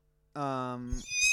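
A single loud horse neigh: a brief steady low call that breaks into a higher, shrill whinny at the end, with no other sounds around it.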